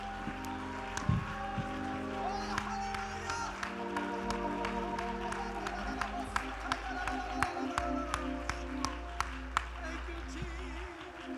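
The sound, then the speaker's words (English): An audience claps steadily while many voices shout and cheer to the Lord together, forming a loud, continuous wall of sound with sharp hand claps ringing out over a sustained low hum. “Let's clap our hands and let's shout to the Lord as loud as we can shout right now.”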